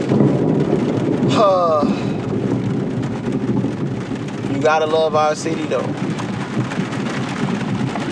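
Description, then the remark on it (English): Heavy rain pours steadily while low thunder rumbles continuously underneath, a dense storm wash. A man speaks briefly twice over the downpour. “But nah, man, Rolling Thunder in this motherfucker.”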